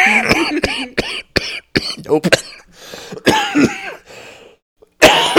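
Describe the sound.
A close, loud run of repeated coughs in quick bursts, some rough and throaty like throat clearing, broken by short pauses, with a brief spoken word near the end.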